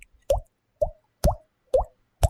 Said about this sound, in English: Yeah, that sounds more like water dropping in a glass than we actually had when we were dropping drops of water in glasses. It's a fortified soil that kind of has a spongy, watery consistency to it.